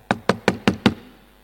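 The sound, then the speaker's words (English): Five quick, firm knocks on a door in an even rhythm, fairly loud, each with a short hollow thud, then quiet. “And so Jesus goes upstairs, and next moment he hears that knock again.”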